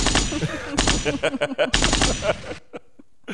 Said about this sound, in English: Gunshots.